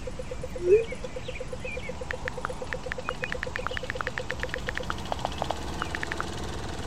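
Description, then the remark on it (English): Birds chirp and twitter in quick, scattered bursts over a steady mechanical drone outdoors in a park on a windy day, while fallen leaves are being cleared, with short sharp calls clustering toward the end; no one speaks. “The wind's loud, but you can hear the birds.”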